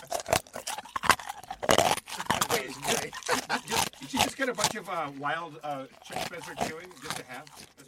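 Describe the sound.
Loud, crunchy chewing with a rapid run of sharp, irregular bites, then voiced, grunting mouth sounds mixed in and continuing over the smacking.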